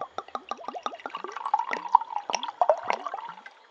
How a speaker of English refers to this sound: Do you mind if I pour us another?